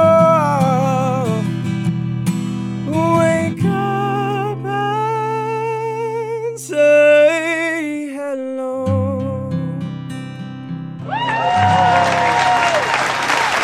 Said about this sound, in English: They're all jumping and stuff, which is really... It's clapping everywhere. Clapping in Studio A and B.